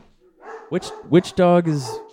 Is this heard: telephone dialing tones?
no